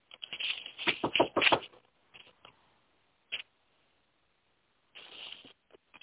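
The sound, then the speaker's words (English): A quick flurry of hard knocks at the start, then a few scattered single raps and a short rattling burst, fairly loud against silence, with no voices. “I think I heard knocking on the door.”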